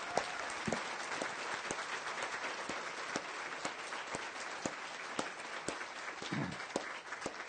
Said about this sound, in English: Let's have a round of applause for all those involved.